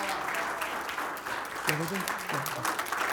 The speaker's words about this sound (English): Now, that's the clap you give Tiger Woods. We're talking about the King of Kings and the Lord of Lords.